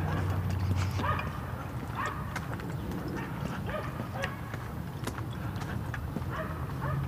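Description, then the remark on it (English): A neighbour's small yappy dog yaps over and over in a steady, relentless rhythm, its sharp high barks sounding against a low background rumble. “Dog gets going, man. It just doesn't stop.”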